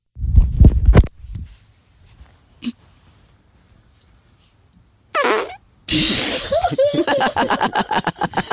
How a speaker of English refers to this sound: Okay, let's hear the next fart.